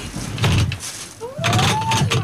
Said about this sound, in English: I'm going to shut the door. I'm going to lock you in.